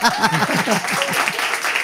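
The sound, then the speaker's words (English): An audience claps and cheers, a dense wash of hand claps mixed with rising whoops and shouting voices, loud and steady for about two seconds. “Clap. Even when you don't want to. Or cheer.”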